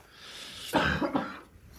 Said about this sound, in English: So I wasn't coughing all day, and then as soon as I start talking for a podcast, then I start coughing.